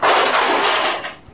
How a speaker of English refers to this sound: Yeah, the door is still shut. That was the hood that flew open.